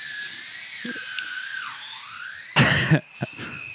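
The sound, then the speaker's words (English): An electric drill whines steadily at a high pitch, its tone sagging briefly midway, then loud grinding bursts break in near the end before the whine continues. “We'll just wait till that drill stops, I guess.”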